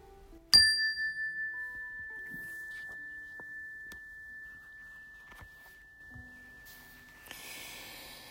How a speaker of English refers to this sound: I will begin and end the meditation with the ring of the chime.